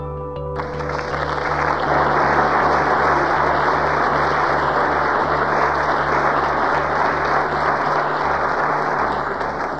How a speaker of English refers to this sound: They say that when a person receives applause before he speaks, that's an expression of hope. If the applause is during his talking, it's an expression of faith, and if it's afterward, it's an expression of charity.